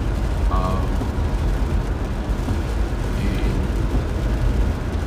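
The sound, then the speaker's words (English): Rain patters on a car window as it drives on a rainy day in Atlanta, making a steady, dense hiss over a deep road rumble that stays loud and even throughout, with a couple of faint, brief tones. “But yeah, you'll hear a little bit of the knickknacks on the window as I drive through this rainy day here in Atlanta.”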